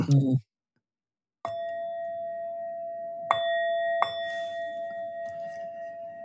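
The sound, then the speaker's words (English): A brief voice, a pause, then a Tibetan bell is struck three times to begin a guided practice, each strike blooming into a clear, shimmering tone that sustains and slowly rings out. “And partly what I'll do is use my, just to get myself in the spirit of things, use my Tibetan bell. I hope that the sound will work.”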